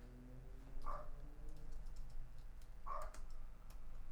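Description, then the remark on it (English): A dog barks twice, two short sharp yaps about two seconds apart, over a steady low background hum. No one speaks. “That nonstop barking is driving me nuts.”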